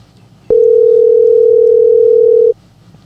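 An outgoing phone call rings through on the line: one steady, loud electronic ring tone holds for about two seconds and then cuts off, with quiet background hum before and after and no voices.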